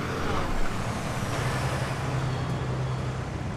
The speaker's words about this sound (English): So that was a 16-wheeler because by nature of an enormous public works project like this, this is a noisy site. There are a lot of big trucks moving through. Those are trucks that haul waste or the sediment that is currently on the lake bottom.